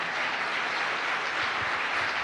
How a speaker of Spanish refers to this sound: Wow, yo creo que eso vale la pena que demos un aplauso, ¿verdad?